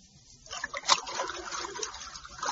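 Water trickles and splashes steadily into a room after a brief quiet start, a continuous bubbling pour that stays fairly soft throughout, with no voices.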